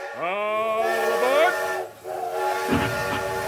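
A loud steam train whistle blows, its pitch sliding upward as it starts, holding a long harmonic blast over hissing steam, then a second shorter toot follows.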